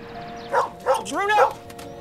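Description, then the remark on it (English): A dog in a TV commercial barks three times in quick succession, the last bark drawn out with a rising and falling pitch, over a steady low background hum. “So the dog jumps on the picnic table and then over the fence, like I'm sure a million dogs have done before him.”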